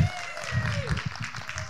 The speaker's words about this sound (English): Are you cheering at him for putting up with me? Just to check.